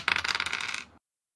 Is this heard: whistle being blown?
no